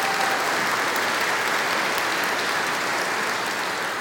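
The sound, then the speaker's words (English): A crowd at a worship service applauds the behind-the-scenes staff steadily, a dense wash of many hands clapping at a constant, fairly loud level throughout with no voices standing out. “And so give them a big round of applause.”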